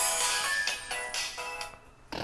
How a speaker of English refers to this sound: What was that? Oh, my phone, sorry. Someone who didn't mute his phone.